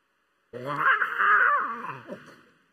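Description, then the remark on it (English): A small, thin roar from a young lion cub, backed into a corner and trying to let out his biggest roar: a single strained growly cry lasting about two seconds, rising then trailing off, fairly clear with no other sounds around it. “So backed into the corner, he gets down and he goes to let out his biggest roar, and all you get is this.”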